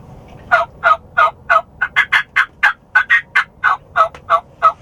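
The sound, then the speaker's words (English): A turkey mouth call gives a steady series of about fifteen loud, evenly spaced yelps, the pitch lifting slightly in the middle of the run before settling back down. No one speaks. “And so, for it, like, I can get a raspier tone with my call the further it is in the back of my mouth, and I get a cleaner tone the closer it is to my teeth.”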